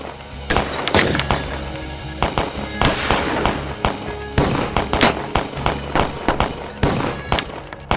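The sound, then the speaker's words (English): Rapid pistol gunfire in a courtroom shootout, a long string of sharp, loud shots cracking in irregular bursts from all directions, some overlapping, with a rumbling echo beneath and no voices. “In the next 90 seconds, gunfire rang out like thunder.”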